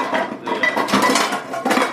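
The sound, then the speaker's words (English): A metal wok clatters and scrapes as it is handled, with loud, repeated clanks and rattles over about two seconds; no one speaks. “It's a wok. That's a wok. We always use the wok.”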